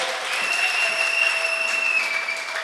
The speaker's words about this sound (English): Acclamons le Seigneur. Let's clap for the Lord.